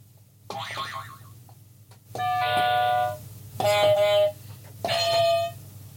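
Four quiz buzzer sound effects, pressed one after another before a musicals quiz game called The Sound of Musicals: first a wobbly, springy boing, then three loud, sustained electronic buzzes, each lasting under a second, separated by brief pauses.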